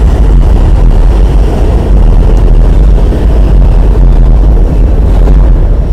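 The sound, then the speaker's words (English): A loud, steady low rumble of an E subway train passing by, a dense mechanical roar filling the whole six seconds with no pauses and no voices. “Okay, well, wait till the E train goes by.”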